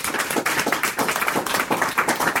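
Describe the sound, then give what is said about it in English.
An audience applauds steadily to thank the three judges, a dense patter of many overlapping hand claps at a fairly even, moderate loudness, with no talking over it. “So thank you to all three of our judges. Round of applause.”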